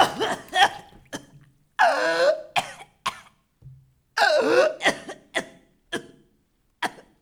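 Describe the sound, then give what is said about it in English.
A person who sank in water coughs it up: harsh, wet coughing fits, a couple of long raspy heaving bursts with gurgling breaths, broken by short sharp coughs and gasps between them. “Cough it out.”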